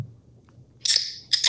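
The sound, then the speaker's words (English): A beer can cracking open sound effect, heard as two sharp, hissy bursts of fizz in quick succession after a moment of near silence. No one speaks. “Is this supposed to play a beer crack?”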